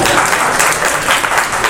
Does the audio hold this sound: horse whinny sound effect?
no